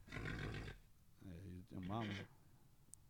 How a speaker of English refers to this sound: then I started playing horse sounds and then he was like already hitting the Jameson so hard he starts fighting with the horse.